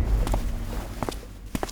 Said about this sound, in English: Goldie carefully pushed open the door and walked in, followed closely by Rollie.